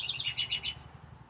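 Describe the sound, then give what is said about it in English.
A spring bird sings a quick series of bright, high chirping notes, about five in a rapid run, clear over a low steady background rumble, then the song fades out. “It's not up to me, it's up to the birds and their performance and how they're feeling.”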